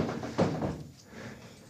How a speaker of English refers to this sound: I love that door. Keeps you all awake. I just pay people just to slam the door, just to jolt you out.